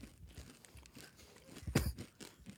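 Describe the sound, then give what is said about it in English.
Crunching of dry, hard, crunchy M&M candies being chewed by several people, with a sharp loud crunch near the middle among softer chewing crackles, no voices. “Choke, it's so crunching, dry. The crunching you guys are doing right now.”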